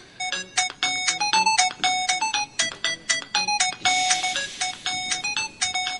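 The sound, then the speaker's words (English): A tinny electronic tune plays from a phone, bright beeping notes in a quick, bouncy rhythm that keep going steadily and fairly loud, with no one talking over it. “And then I could even play music.”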